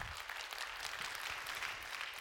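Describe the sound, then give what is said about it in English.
An audience claps for God in a dense, steady wash of applause that stays loud and even throughout, with no voices standing out. “Yeah, you can clap for that. You can clap for our God.”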